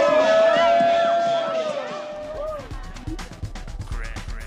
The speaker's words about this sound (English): Hey, give y'all a round of applause for yourself for being such a great audience.